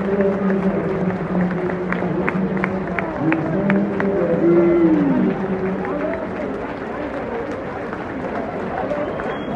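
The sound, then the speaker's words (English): A large football stadium crowd roars steadily as a few Kiev players come over to the Gala Street and applaud, with rhythmic, evenly spaced claps cutting through and a low droning chant of many voices underneath, continuing loudly throughout. “There's a few Kiev players coming over to the Gala Street and applauding.”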